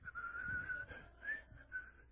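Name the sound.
person whistling a tune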